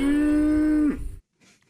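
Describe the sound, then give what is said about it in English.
A single long, loud cow moo held steady for nearly a second, ending with a downward bend and a rough tail, then a brief faint rustle after a short silence. “Is that two cows in a field?”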